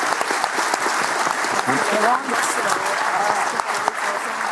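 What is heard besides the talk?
audience round of applause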